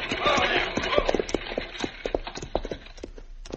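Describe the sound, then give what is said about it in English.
Several horses clop along under a rumbling, rattling buckboard wagon toward dark, the hoofbeats slowing and thinning out as the team pulls up and comes to a halt. “All right, Shorty, pull up them horses.”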